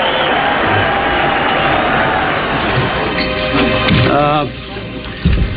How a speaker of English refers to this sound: And that means that there will be someone new to run the Yankees. You're hearing fans applaud the decision. Isn't this amazing?